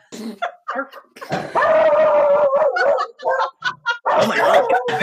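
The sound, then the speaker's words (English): A human voice imitates a dog, with a few short yipping barks, then a long, drawn-out howl and more barking bursts. The imitation is fairly loud, and there is brief talking around it. “Oh, I'll show you a bark.”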